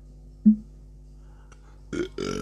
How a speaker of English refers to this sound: You're going to hear that burp extra clear because I'm using my mic now.